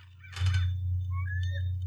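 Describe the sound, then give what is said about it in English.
A short eagle-screech alert tone: a harsh raspy burst followed by a couple of thin, rising whistled cries, played once over a steady low hum with no talking. “I have an eagle. There's an ad coming up.”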